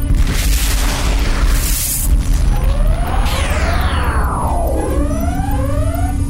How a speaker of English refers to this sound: Methane-fueled explosion. Methane-fueled explosion. Report. Their bomb destroyed our EMP blaster.